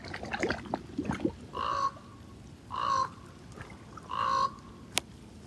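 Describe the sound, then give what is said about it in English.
A raven calls three times in a slow, evenly spaced series of harsh, croaking notes, clear, after some brief scattered clicks and rustling at the start, at Gitchigami. “Greetings from Raven.”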